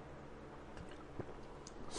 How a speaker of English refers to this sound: I am sipping not the tea, but the seltzer.